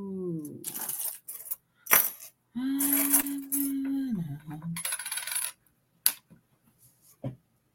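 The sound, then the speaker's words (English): Small metal charms are mixed up by hand, clinking and rattling together in a series of uneven bursts. A bright jangling comes with short pauses between shakes and a louder, longer stretch of clattering in the middle. “So let me see what she has to say while I mix these charms up.”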